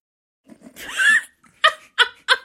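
A drawn-out, croaky burp, made right on cue as someone counted down, rises and falls for about half a second, then three short, sharp vocal bursts follow in quick succession, fairly loud, with no talking.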